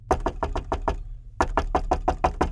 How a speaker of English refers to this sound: Whoever was knocking didn't want to stop.